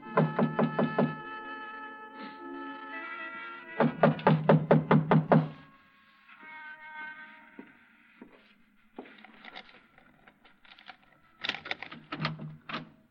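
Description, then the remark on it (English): Three bursts of rapid, firm knocking on a locked front door late at night, each a quick string of sharp raps, separated by pauses, with soft sustained music playing underneath throughout. “I tried the front door, but it was locked. I didn't think anyone would be there that late, but I knocked anyway.”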